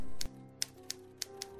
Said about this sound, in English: What? Okay, who's doing this? Typewriters don't just type by themselves.